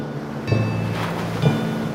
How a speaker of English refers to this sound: And storms can make big waves. There's a big giant wave. And it can go higher. Yeah, big waves. The ocean is getting rough.